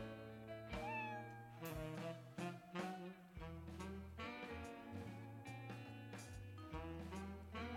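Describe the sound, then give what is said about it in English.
A cat meows repeatedly in drawn-out, wavering cries over a steady tonal, music-like backing that fills the whole stretch; the sound is loud, with no talking. “Is it a cat? It is, in fact, a cat.”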